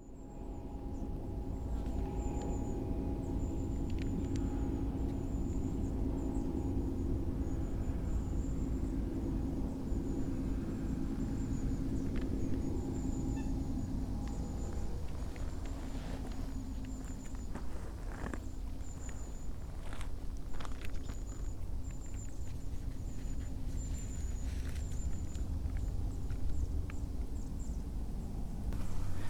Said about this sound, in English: Presumably quarrying noises in the background.